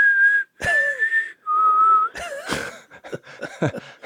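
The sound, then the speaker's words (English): A person whistles a western film theme tune: a few long, steady, clear notes, then a breathier, choppier run of shorter sounds. No talking. “you know, I'll do my little dove call, that little, and then I'll whistle.”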